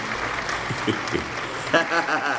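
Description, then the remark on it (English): A crowd in Naperville claps steadily in a dense, continuous wash, with a few voices whooping and cheering over the applause toward the end. “Ooh, got the good applause.”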